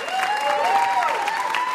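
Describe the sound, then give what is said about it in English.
A crowd applauds game contestants with steady, dense clapping for about two seconds at an even volume, a faint sustained tone gliding softly above the noise. “So we applaud you for that.”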